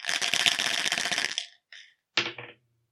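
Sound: dice being rolled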